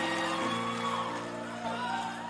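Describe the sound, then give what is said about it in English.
A live crowd roars and cheers with scattered whoops after a song ends, a loud, dense wash of voices that holds steady for the whole moment, with no single speaker standing out. “Song over. Applause, applause, applause from the crowd.”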